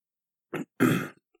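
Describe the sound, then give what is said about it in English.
A short throat clearing followed by a harsh, rasping cough-like burst as a person tries to dislodge a piece of olive stuck in the throat, then a faint catch of breath. “A piece of an olive, like, in my throat, and I was trying not to cough and trying to, like, slowly swallow it down.”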